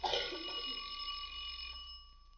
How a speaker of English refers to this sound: Try the doorbell.